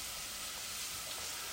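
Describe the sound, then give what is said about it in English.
Onions sizzle steadily in a hot frying pan, a continuous bright crackling hiss that stays even throughout, with no voices over it. “But you can hear the onion sizzling away.”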